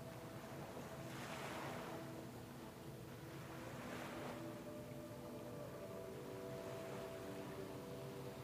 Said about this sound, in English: You can begin walking. Just along the shore as the waves crash, walking along its edge.